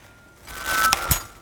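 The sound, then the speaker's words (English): A set of metal keys, including an ornate one, clinks together as it is held in hand: a soft jangling rustle building to two bright, ringing chinks about a fifth of a second apart, with no talking. “So as I hold these keys today and we talk, and we're just going to go on a bit of a journey with God.”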